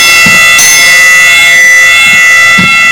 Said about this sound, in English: So long bell. That was a long bell.